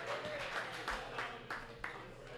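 A crowd applauds steadily, a dense wash of many hands clapping at an even, moderate level, with a few sharper individual claps standing out now and then.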